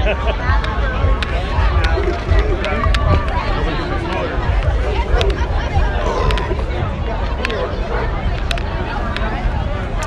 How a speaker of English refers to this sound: But there is a definite buzz among the crowd.